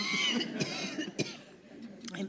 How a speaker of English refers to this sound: I'm so sorry about this. Enough to make anyone cough.